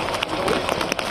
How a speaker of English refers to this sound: Rain. And fire are the soundtrack of Australia's climate crisis.